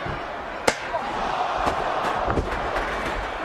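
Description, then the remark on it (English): A sharp, loud metallic crack rings out once as a steel chair is swung at a wrestler during a 2001 professional wrestling tables, ladders and chairs match. Several softer impacts follow, all over the steady roar of a large crowd. “And the steel is, they're swinging steel here.”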